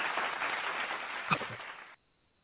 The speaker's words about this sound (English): Oh, yes, true indeed. Throw some claps on it for you.